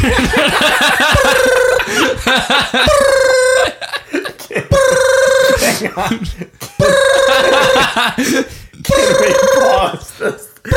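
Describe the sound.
A voice imitates a telephone ringing with 'bloop' sounds, repeating a warbling, buzzy ring in four loud bursts separated by short pauses, with a steady rhythm like a phone trilling.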